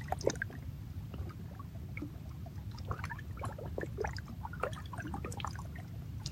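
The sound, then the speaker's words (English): Water flows and splashes over rocks in a steady stream, with scattered bright gurgles and trickles above a continuous low rushing. “Without the rock, we do not hear the water.”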